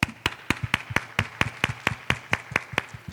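Parents at a school event applaud the grade 1 and 2 children, heard as a steady, evenly spaced run of sharp hand claps, about four per second and roughly a dozen in all, moderately loud with no voices over it.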